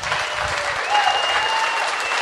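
An audience applauds steadily, a dense wash of many hands clapping at an even, fairly loud level for the whole stretch with no one speaking over it.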